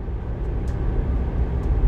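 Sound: car driving on highway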